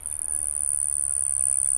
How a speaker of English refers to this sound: In flight, bee hummingbirds' tiny wings beat 80 times a second, and during a courtship flight, they beat up to 200 times per second.